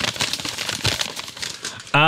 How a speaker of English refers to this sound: Crinkle that paper up in the microphone, Scott. There's no sound like that.